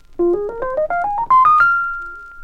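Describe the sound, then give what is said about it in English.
A dry Rhodes electric piano, played straight without the Echoplex or other effects, plays a quick ascending run of about ten bell-like notes with no echo, ending on a higher note that rings out and slowly fades. No one speaks. “Okay, now here's a straight sound.”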